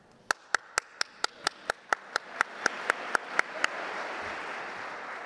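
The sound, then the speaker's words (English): At a speech contest, a single person claps to commemorate the 35-year-long legacy celebration of Dr. Martin Luther King Jr. About fifteen sharp, evenly spaced claps speed up slightly, then stop as broad crowd noise swells into applause-like hiss in the background. “Some of you may ask, why is she clapping? To answer your question, I'm clapping to commemorate the 35-year-long legacy celebration of Dr.”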